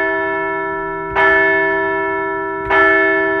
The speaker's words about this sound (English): Wow, what a victory on Friday night. Let's ring the bell for that one.